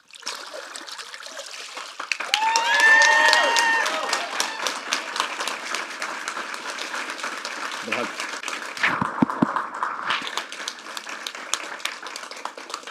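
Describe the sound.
An audience applauds after a baptism in a steady, sustained burst of many hands clapping, lasting the whole stretch at a fairly even level, with a few voices rising briefly near the start.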